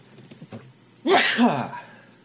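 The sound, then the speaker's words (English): A single loud sneeze bursts out after a brief quiet moment with faint background murmuring, its sharp onset trailing into a breathy, throaty tail. “Bless you.”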